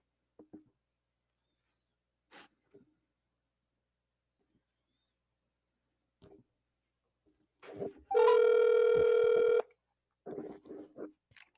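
A few scattered clicks and taps, then a single loud outgoing phone call ring tone that holds steady for about a second and a half, followed by some brief rustling noises. No one speaks.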